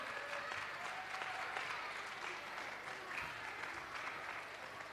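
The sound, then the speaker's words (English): Sustained applause from a large audience for Benson, the overall winners, as children collect the award, a steady dense wash of clapping hands at a loud, even level throughout, with no voices standing out. “One big round of applause for Benson, the overall winners.”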